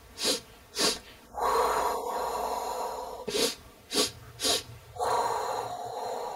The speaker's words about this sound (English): And then, you can smooth it out, right? So you can sniff, sniff, sniff, and then exhale long, one, two, three.